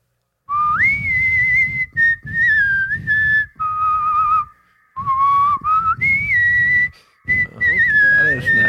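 A person whistles a tune, clear and fairly loud, in several melodic phrases separated by brief pauses, with a low rumble of background noise underneath.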